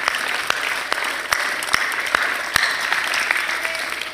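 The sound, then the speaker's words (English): A church audience applauds steadily as a hand clap offered to the Lord during a sermon, a dense wash of many overlapping hand claps with a few sharp, louder claps standing out, sustained at an even level throughout with no voices. “Lord, you're worthy of a hand clap right here, Lord.”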